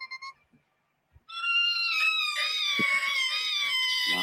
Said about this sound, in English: That's one of them screeching metal sounds I was talking about earlier, man.